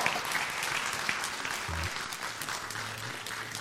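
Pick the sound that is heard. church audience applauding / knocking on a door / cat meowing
church audience applauding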